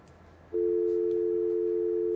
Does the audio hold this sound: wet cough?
no